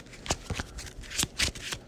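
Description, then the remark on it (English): A deck of cards being shuffled during a card game: a quick run of crisp, papery riffles and snaps in an uneven rhythm, fairly quiet, with no one talking. “I'm going to shuffle back no stern untone because I didn't need it.”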